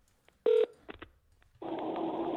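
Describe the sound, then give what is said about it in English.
A telephone number is dialed: one loud keypad tone, a couple of quicker fainter beeps, then a steady buzzing line tone that continues to the end, with no talking. “So what I'm going to do is call”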